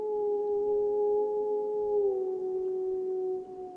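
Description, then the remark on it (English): A single wild wolf in Yellowstone lets out a long, steady howl that slowly drops in pitch, sustained and clear against a quiet background with no one speaking. “I mean, the howls were booming in, and it was like in the palm of your hands, and that wolf never stepped into the light of the moon, and I never saw it.”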